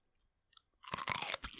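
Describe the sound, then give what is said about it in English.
A crisp pickle is bitten with a sharp crunch, then chewed wetly, a few quiet clicks before the loud bite and a dense burst of crunching after it. “Because right now, we're eating pickles.”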